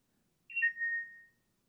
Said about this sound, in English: Bell of mindfulness. I know, it's actually the aircon.